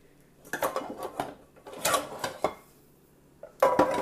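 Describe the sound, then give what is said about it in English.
Pots and pans clatter and clank in bursts as they are pulled out of a dishwasher one after another, with metallic knocks and scraping, fairly loud, with a short quiet gap between groups. “Let's see how, yeah, this is what, oh my gosh, this is why nothing got clean in here, because I've got all these pots and pans in here, and they were pretty dirty.”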